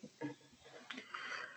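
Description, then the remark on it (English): A single drawn-out yawn close to the microphone, opening with a low voiced groan and trailing into a breathy, airy exhale. “But yeah, I don't mean to yawn on mic.”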